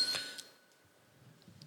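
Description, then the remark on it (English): A single bright ding from a desk bell, pressed once during a quick-fire question round game, its metallic ring fading out over about a second with no one talking. “If the bell gets pressed and you don't say it, then we move.”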